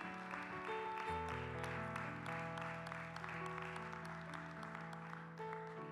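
A church audience claps steadily and loudly for several seconds in praise of the Lord, the dense patter of many hands carried over sustained organ-like chords that swell and shift underneath.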